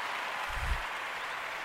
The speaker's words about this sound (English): I'm going to let the whole applause play out because, you know, we have to.